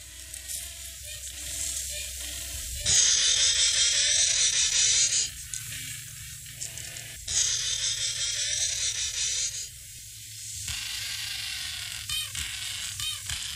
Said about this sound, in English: And that is the aquatic flightless bird called a penguin, and it inhabits mostly the southern hemisphere.